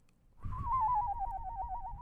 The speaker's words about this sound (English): There's two sounds. One is a whistle that I do that kids, if I did it in class, they're amazed by it. Okay? Okay. So here's the whistle.